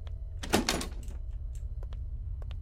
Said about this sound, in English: Let's just try all these doors, I guess.